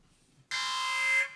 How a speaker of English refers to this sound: Uh-oh, wild card, police siren sound, and the voice of … is heard over the megaphone.